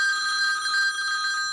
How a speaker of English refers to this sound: A phone rings.